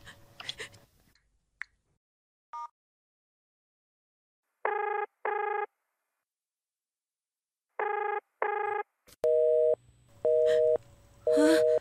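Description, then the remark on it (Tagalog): A phone's busy tone after a call is cancelled by the person called sounds in repeated short electronic beeps, paired bursts at a steady rhythm, loud, after a few faint clicks and brief noises at the start. “Kinansel niya yung tawag ko.”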